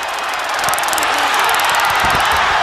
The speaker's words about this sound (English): What was that? That's one of those tasers the police use. It's like a stun gun. That was Scott Hall. That was Scott Hall, and you could hear it clicking. It was like a cattle prodder, a stun gun.